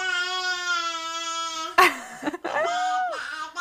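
A 10-month-old baby girl screams in a long, sustained high-pitched wail, breaks off with a sharp gasp, then launches into another loud, rising-and-falling cry. No one speaks.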